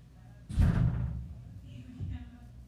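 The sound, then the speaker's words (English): A heavy, booming thud on a door, followed about a second and a half later by a softer second knock, both low-pitched over a murky background. “That's why he knocking like that.”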